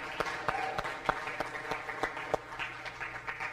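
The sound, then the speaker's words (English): A church audience applauds with steady, overlapping claps, a dense crackle broken by a few sharper individual claps that stand out over the wash. “So you all deserve a round of applause for being a part of that.”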